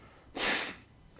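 One quick, forceful nose blow, a harsh breathy burst lasting under half a second, with quiet background before and after and no talking.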